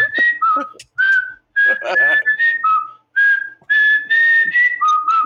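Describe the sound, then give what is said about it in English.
A person whistles a lively tune, clear tonal notes jumping between higher and lower pitches in short phrases with brief pauses, with some faint background noise underneath. “Was he whistling?”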